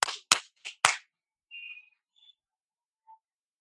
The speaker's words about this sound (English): People are up on their roof, on their fire escapes, banging pots and pans. You can hear someone's ringing a bell. I see someone's holding a bell on their fire escape.